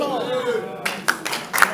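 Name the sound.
audience clapping hands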